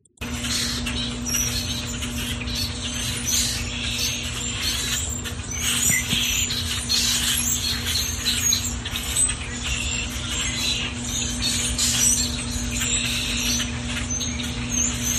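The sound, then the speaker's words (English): A dense chorus of many small birds in a tree beside a house deck, chattering and chirping at once, continuous and busy for the whole stretch, over a steady low hum and no voices. “But I was just like, oh my God, it was like every single bird imaginable all talking at once.”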